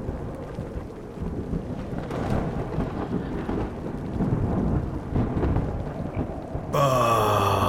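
A loud, continuous thunderstorm roars with deep rolling rumbles, rushing wind and rain. Near the end a sharper, ringing electrical burst cuts in over the din. No one speaks.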